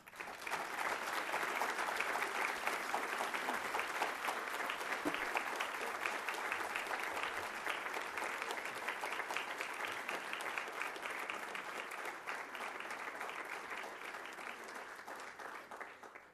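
Sustained audience applause, a dense steady wash of many hands clapping that stays loud throughout, with occasional faint cheers mixed in and a slight easing toward the end.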